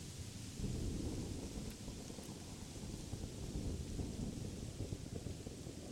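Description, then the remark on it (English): A steady, dense roar of heavy rain in a thunderstorm with strong wind, with deep rumbling low-end energy like wind and thunder, continuous throughout, with no voices. “The winds becoming more powerful and the rain pouring down heavily.”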